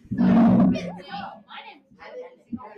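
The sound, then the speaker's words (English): A person imitates a monkey with one loud, rough, roaring burst, followed by quieter voices talking and some scattered vocal noises. “What sound does a monkey make?”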